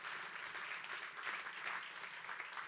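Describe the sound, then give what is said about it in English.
A crowd claps steadily for a few seconds, a dense, even wash of many hands with no single beat standing out and no voices over it. “If you're over like 30 and you think that's true, clap your hands.”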